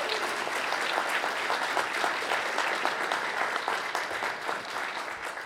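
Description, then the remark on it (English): Sustained audience applause at an IDW Publishing Teenage Mutant Ninja Turtles panel, for panelists including Kevin Eastman, a dense steady crackle of many hands clapping at an even loudness throughout, with no talking over it. “So let's keep that applause going for Kevin Eastman.”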